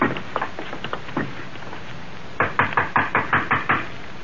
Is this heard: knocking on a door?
yes